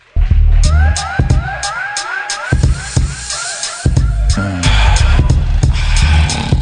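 An audience claps and cheers for several seconds, the applause growing fuller toward the end, with repeated rising whoops or whistles over the crowd noise.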